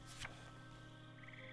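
A frog croaks once in a short, rasping burst, then a quicker run of pulsed chirps follows over a steady low hum. Nobody speaks.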